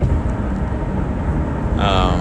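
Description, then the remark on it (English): Loud, steady highway traffic roar from inside a vehicle driving over a river, a dense low rumble that never lets up, with a brief higher whine rising over it near the end. “So, apologies, this part of the highway is very loud.”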